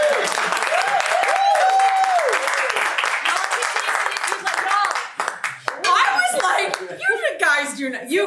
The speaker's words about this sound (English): All right, clap.